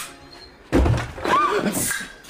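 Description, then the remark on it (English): A door bangs open with one loud slam after a quiet moment, followed by a burst of rustling commotion and indistinct voices. “This is their door.”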